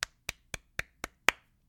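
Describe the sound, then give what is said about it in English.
Six sharp hand claps in a steady, even rhythm, each crisp and bright with a quick decay, the last slightly louder and ringing a touch longer, with no talking; a little clap given for Scott Linehan. “I'll give Scott Linehan a little clap here.”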